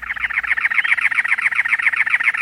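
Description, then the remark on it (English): A cactus wren sings a long, steady run of harsh, raspy chugging notes, repeated rapidly and evenly, loud, with no voices, perched atop a many-lobed cactus in the Arizona desert in late April, over 90 degrees. “A cactus wren sings, perched atop a many-lobed cactus.”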